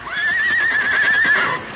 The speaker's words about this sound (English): What scared Tonto's horse?